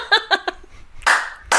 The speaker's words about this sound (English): Clapper. Wanna give me a clap? Not the clap. A clap.